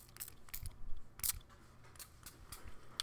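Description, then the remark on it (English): A dog crunches on a carrot, sharp crackly bites coming at an irregular pace, with one especially loud snap partway through and softer chewing crunches between, no voices. “And what are you eating? I hope that's something you can eat. Yep, it's carrot.”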